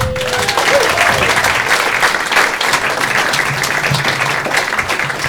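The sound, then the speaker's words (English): A comedy show crowd claps steadily and loudly to welcome stand-up comedian David Kay, a dense wash of applause that holds for several seconds without pause, with a faint whistle near the start and some scattered cheering mixed in. “Thanks for clapping.”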